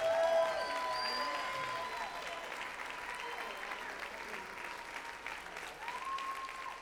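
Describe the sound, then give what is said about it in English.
A large standing crowd applauds steadily and loudly for several seconds, dense clapping with scattered cheers and whistles rising above it, sustained throughout without pause. “Come on, let's stand up and give them a round of applause.”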